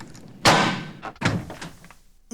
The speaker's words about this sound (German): Beunruhigt klopfte der Hotelbedienstete an der Tür mit der Nummer 406. Als sich nichts regte, schloss er die Tür auf und trat ein.